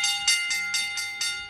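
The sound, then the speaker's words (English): An electronic bell marking a show's Bell Lap segment rings continuously, its bright metallic tone pulsing in about six quick, even bursts over a second and a half. It is loud and steady, with no voices. “Yeah, that is a solid bell, electronic bell there to give you the ding, ding,”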